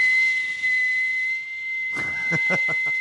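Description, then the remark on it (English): A thin, steady high whistle blown through the teeth without using the lips holds one pitch for about three seconds, fairly loud, with a brief burst of voice or breathy noise near the end. “No, it's like the number one thing you'd learn how to do is whistle without your lips so that you could whistle.”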